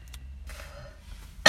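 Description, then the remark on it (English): A single sharp, loud cough bursts out at the very end after a stretch of quiet low rumble and a faint throaty rasp. “Yeah, so when I cough, it's no joke. I just, like, I fucking cough like crazy.”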